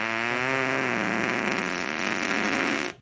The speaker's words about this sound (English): Do you have Jeff's great fart? This is Casey's. I actually have them. Casey's best friend, Jeff. Yep. And then Jeff has his super fart. Okay. And this is like totally legit.